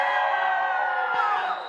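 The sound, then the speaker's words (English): A crowd cheers and shouts loudly all at once in a 'Jericho cheer', a dense, sustained roar of many voices with high-pitched yells mixed in, continuous for a moment before easing slightly at the end. “Verse 20, when the people heard the sound of the ram's horn, they shouted as loud as they could, Jericho cheer, Jericho cheer!”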